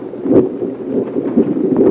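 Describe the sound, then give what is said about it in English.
A low, rolling rumble of thunder during a lightning storm fills the whole stretch, steady and moderately loud with a few slightly heavier swells, and no one speaks. “A little bit of thunder thrown in on the side.”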